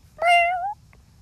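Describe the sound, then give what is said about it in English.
A single drawn-out meow from a tabby cat named Lucky, fairly loud, rising slightly then fading, with a faint low background hum and a tiny click afterward. “We're sitting here with one of the most sharpest kitty cats ever.”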